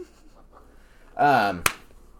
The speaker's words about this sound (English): What'd you slap me for?